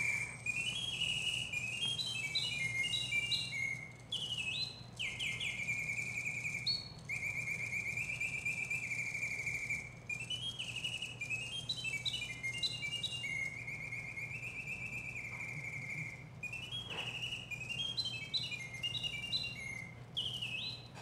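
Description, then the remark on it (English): A handmade mechanical scarlet tanager automaton whistles a continuous chirping song, its slide-whistle notes sweeping up and down in quick warbling runs over a steady low mechanical hum, loud throughout, as bellows pump and a plunger moves rapidly in and out, driven by toothed cams. “They're pumping there on the left, and then you have the slide whistle, and you can see there's a plunger that's moving in and out at a rapid pace.”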